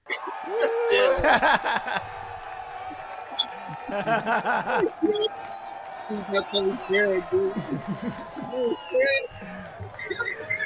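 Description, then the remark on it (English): A burst of recorded crowd cheering and applause played from a soundboard as a guest introduction, loud and dense, with whoops and clapping bursts rising and falling over several seconds while voices mix in. “what do you think of our new the soundboard with the cheering to as the introduction?”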